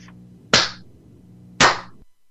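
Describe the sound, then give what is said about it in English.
Two loud, sharp hand claps about a second apart, each a crisp smack with a short ringing tail over a faint low hum. “that's too loud of a clap.”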